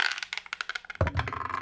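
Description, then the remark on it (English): Dice clatter across a hard tabletop as players roll to determine their sub-race from the PHB: a quick run of sharp clicks, then a denser burst of rattling as several land and settle. No voices. “So let's grab our dice and roll to cover our sub-race.”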